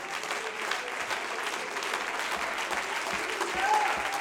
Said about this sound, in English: Oh, I need you to stand to your feet and clap your hands unto the Lord with all of your might right now.